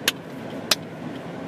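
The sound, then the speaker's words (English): Steady low rumble of a whole line of cars in traffic coming towards the speaker, who is waiting at a red light: a continuous road drone with no voices, broken by three sharp, evenly spaced clicks. “Now that whole line of cars, it's coming towards me.”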